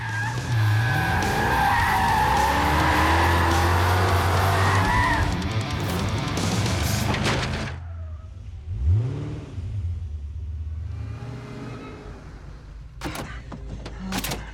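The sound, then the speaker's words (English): A car driven very fast by a stunt driver for a film scene, with actors Shia and Megan aboard, roars along with loud, sustained tire squeals and skidding for several seconds, then the noise drops away to a quieter rumble with a few sharp clicks and thumps. “So, like, when we're doing scenes like this, I'm oftentimes in the car with Shia and Megan, and we're driving with a stunt driver, and we're driving very fast and controlled, but it's really gets their adrenaline going, I must say.”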